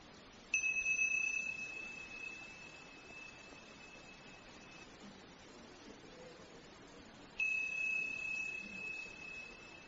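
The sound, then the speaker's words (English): A meditation bell is struck twice, several seconds apart, each strike ringing out with a clear, bright tone that lingers and slowly fades over a quiet background. “When you hear the sound of the bell, open your eyes and begin.”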